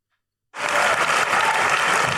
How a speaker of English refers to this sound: Let's clap for him for that one. The sexiest.